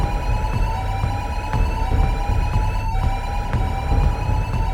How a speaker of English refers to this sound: And without thinking, I just reached over with my knuckle, and I gave the bottom of the frame a little tap, which is, I don't recommend that you do. And holy cow, I've never heard louder or more alarms in my life.